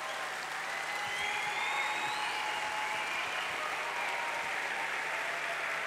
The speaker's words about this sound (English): You're clapping and you're celebrating for people thinking and putting this together